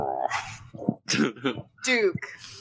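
dog grunting

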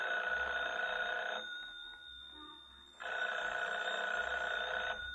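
telephone ringing

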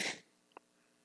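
nose sniffing

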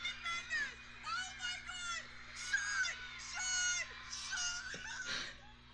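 excited screaming

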